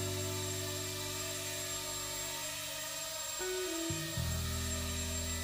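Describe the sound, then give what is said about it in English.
A small cameraless drone buzzes steadily with a whiny motor hum as the pilot tries to hold it steady close to him, then its pitch drops and shifts as it changes speed, with no voices. “So it's a cameraless drone. It can't take any pictures, can't do any surveying.”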